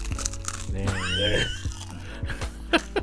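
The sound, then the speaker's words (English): A high, wavering vocal squeal rises and falls, then a couple of short, sharp crunches follow as someone bites into crisp pizza crust, over a low steady background hum. “Let's crunch Lock together.”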